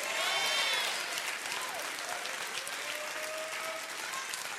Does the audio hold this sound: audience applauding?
yes